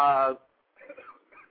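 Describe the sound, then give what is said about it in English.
A single sharp, loud sneeze, caused by a tickle in the throat, bursts out at the start with a strongly voiced, tonal ending, then quiet murmured speech follows after a brief pause. “Bless you.”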